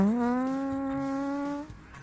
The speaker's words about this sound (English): Sorry. I farted.